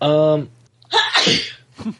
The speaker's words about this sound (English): Bless you. That was the letter. It's a sneeze.